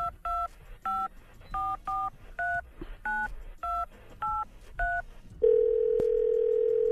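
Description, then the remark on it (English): A phone number is dialed on a keypad, a quick series of about ten clear touch-tone beeps in an uneven rhythm, followed by a steady ringing tone with one faint click partway through. “I want you to call him.”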